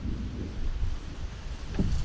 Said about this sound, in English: And it's windy, too. Really windy right now. Guys, I don't know if this is a good idea on a windy day.